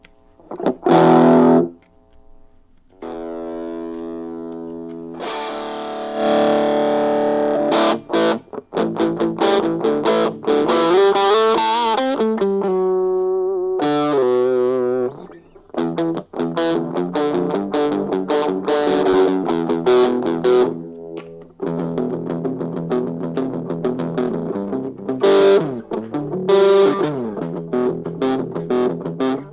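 Distorted electric guitar played through a small practice amp using its built-in distortion, with crunchy sustained chords, bends and quick riffs separated by brief pauses. Loud, no voices.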